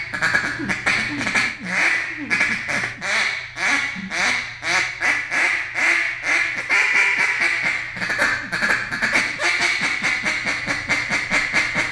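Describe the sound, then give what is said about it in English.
A duck call blown as a hiccup confidence call, a steady run of short, bright quacks with a catching, hiccup-like rhythm, fairly loud, continuing for the whole stretch without any talking. “I'll do that a lot too, as far as on that hiccup. Just, you know, again, that's the confidence call, getting them to sit down, just kind of chill out.”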